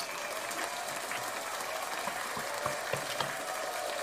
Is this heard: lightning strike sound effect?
no